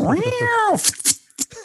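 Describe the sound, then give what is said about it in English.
A voice does a single drawn-out, wavering meow, loud, followed by a few short breathy syllables and hissy bursts imitating cats fighting. “Now we're getting into the cat fights, meow.”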